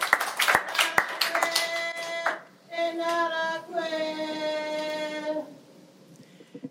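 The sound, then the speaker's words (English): A short burst of scattered, sharp hand claps in a courtroom fills the first couple of seconds, then gives way to a sustained, steady-pitched voice that sounds like singing or chanting, before fading to quiet. “even Judge Shaw is in tears, and there's heartfelt applause.”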